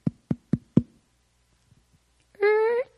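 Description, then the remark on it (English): Four firm, evenly spaced, loud knocks on the door of Judas's house, followed after a short pause by a brief sustained tonal sound, like a short voiced call. “So he gets there. And he knocks.”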